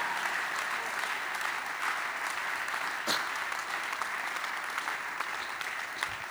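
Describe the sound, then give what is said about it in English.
Steady, continuous applause from a crowd fills the whole stretch, a dense wash of many hands clapping at an even level with no voices standing out. “I need a sustained clap in the building of anybody who is so strong prophetically.”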